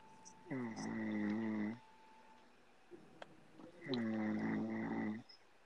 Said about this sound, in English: if you're gonna snore, could you quiet down?